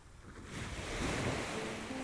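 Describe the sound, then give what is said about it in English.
Ocean waves break and wash onto a beach in a steady rushing roar that swells louder midway through, with a hint of wind and no voices. “The air from the waves also delivers negative ions, or atoms, with a net negative electrical charge.”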